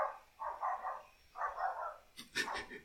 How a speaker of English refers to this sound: A dog in your local neighborhood agrees the twilight bark has begun.